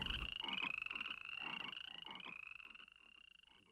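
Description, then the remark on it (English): A chorus of frogs croaks in rapid, overlapping pulses over a steady high-pitched trill, sounding fairly loud before thinning out slightly toward the end. “Accordingly, Moses and Aaron went out from Pharaoh, and Moses cried out to Jehovah, and the frogs began to die off.”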